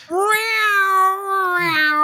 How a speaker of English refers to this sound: That's how she shows up. She's a cat. She's literally, on the nose there, Power Rangers. Cat is a cat.